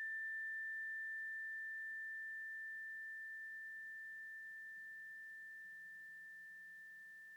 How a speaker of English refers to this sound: I'm going to ring the bell one final time, and I want you to put all your attention on the chime, keeping your eyes closed until you no longer hear the ringing.